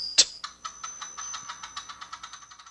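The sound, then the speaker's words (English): A sharp bright ping opens, followed by a rapid series of light metallic ticks that gradually speed up: a coin-flip app on a phone held next to the microphone, the coin landing on heads. No voices. “I'll put the app, the phone, next to the microphone so you guys can hear it.”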